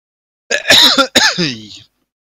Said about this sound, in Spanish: Es la tos, es lo que me puede desconcertar.